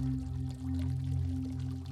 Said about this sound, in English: I am underneath the terminus. Waves rock high above me. I cannot see them, and yet I know that they are there.